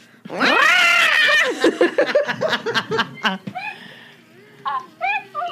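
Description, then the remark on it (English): A shrill porg creature squawk rings out loud and long, then breaks into a rapid string of warbling chirps and trills that trail off into softer, scattered cries. No talking. “I probably would have sounded like the Porg.”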